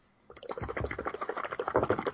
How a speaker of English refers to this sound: And now rinsing his mouth out with water. I'm so sorry. Because he can't bear a bit of cheese and onion crisps.